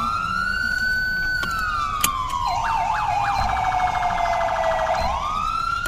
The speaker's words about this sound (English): So what do you guys think of me changing my sirens later? I'm eventually gonna change my sirens after this episode, to be something different.